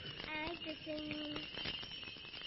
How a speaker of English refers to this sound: Oh, come on. Ring them. When you hear bells ring, what do you think?